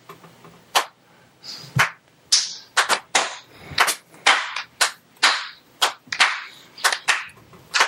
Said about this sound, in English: Even Wheels is clapping, and he's not even here. Sorry, wow. that deserved a slow clap.